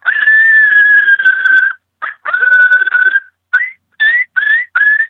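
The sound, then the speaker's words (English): Loud coyote estrus whimpers and chirps made on a diaphragm mouth call: two long, wavering whines followed by a quick series of short, rising chirps, with no talking. “Call those estrus chirps and estrus whimpers, and this time of year is magic.”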